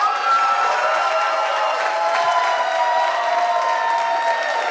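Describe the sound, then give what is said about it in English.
A large crowd erupts in sustained shouting and cheering at an award announcement, a dense, loud wall of excited voices filling the room without pause, as the Mexico team jumps from their seats after Del Campo from Mexico is announced as 3rd place. “The entire Mexico bus jumps out of their seats, shouting, cheering, hugging their teammates.”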